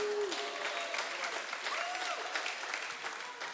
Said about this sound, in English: Hold on, hold your clap.